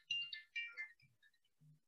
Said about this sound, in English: My phone's ringing.